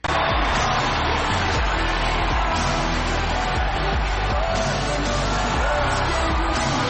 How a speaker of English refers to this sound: And Kendall hands the cops a Pepsi. And the cops drink the Pepsi. And everyone starts cheering.